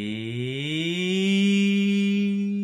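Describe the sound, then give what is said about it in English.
A voice imitates a cinema sound effect, humming one loud, sustained, buzzy tone that slides upward in pitch and then holds steady for a few seconds, with no talking. “I was doing the sound effect at cinemas because we're going to talk about audio.”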